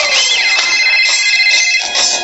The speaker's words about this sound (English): Let's call her. It's ringing.